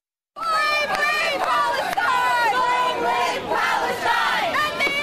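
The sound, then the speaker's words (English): A large crowd of protesters calling for Ahed's freedom shouts and chants together inside New York's Pennsylvania train station, facing off against a much smaller group of pro-Israeli protesters; many raised voices overlap in a loud, continuous, echoing roar with rising and falling cries. “Listen to the scene inside New York's Pennsylvania train station. A large group calling for Ahed's freedom, facing off against a much smaller group of pro-Israeli protesters who feel her arrest and incarceration is justified.”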